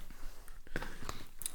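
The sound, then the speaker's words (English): Wet chewing with the mouth open, a few soft smacking clicks at an irregular pace over a low background hiss, with no talking. “Oh, now you chew with your mouth.”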